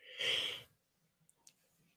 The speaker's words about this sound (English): I keep on yawning.